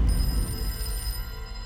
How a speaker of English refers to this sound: But at 10:41 a.m., the phone rang for a second time.